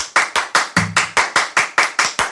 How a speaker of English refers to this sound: Okay, I like to clap on all the in betweens. Okay, so like if you do the thing, oh, one, gosh, two, three, four.